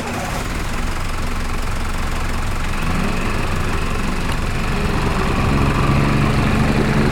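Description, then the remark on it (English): A dive boat engine runs steadily and loudly in Hawaii on the way to the coral reef off Kapalua Bay, a dense low rumble with a rough mechanical hum that holds constant throughout, no voices present. “Let's jump on my dive boat and we'll get going right away.”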